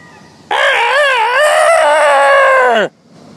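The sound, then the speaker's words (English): A single loud rooster crow on a street beside a hotel, holding a long wavering harmonic call for over two seconds before dropping off sharply at the end, with quiet background before and after. “I've been walking down the street talking to you, and now I'm walking right into my hotel, and I can still hear them. So there you go. That's my rooster story.”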